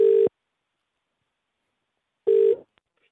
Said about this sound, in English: All right, let's make this phone call, man.